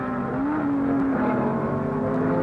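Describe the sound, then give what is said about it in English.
Racing car engines roar together at the start of a race in a loud, continuous drone, a steady mid-pitched hum with a tone that rises slightly and then holds, with no voices. “When the thunder of the start dissipates into a train-like echo, Mario Andretti, in Ferrari number 5, pulls Stewart, Seifert, and Eakes through the serpentine infield.”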